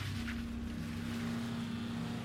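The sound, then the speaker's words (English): A Prius car engine drones steadily as it is started up and the gas is hit, a constant low hum with a breathy rushing layer on top, holding an even level throughout with no voices. “Then the killer hopped into the driver's seat of the Prius, started up the engine, and hit the gas.”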